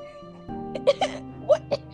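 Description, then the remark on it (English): A man coughs in four short, harsh bursts, two close together and then two more after a brief pause, over a steady low humming background. “He starts coughing and like, what just happened?”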